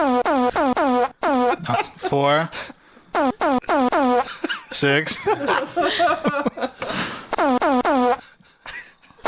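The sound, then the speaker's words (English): A rapid string of loud, buzzy fart sound effects comes in short rhythmic bursts, played to spell out a phone number, with a person briefly speaking and chuckling between them. “I was going to say, can I play the phone number in fart sounds?”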